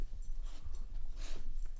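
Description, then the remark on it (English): A male dog makes soft snuffling, whimpering noises, with a few brief breathy bursts over a steady low rumble and no one talking. “He's a funny dog.”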